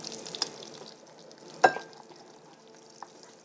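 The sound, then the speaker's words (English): Butter sizzles steadily in a pan, a soft continuous crackle with a few sharper pops and spits standing out, fairly quiet, with no voices. “And I am going to, that's the butter sizzling, fill another measuring cup.”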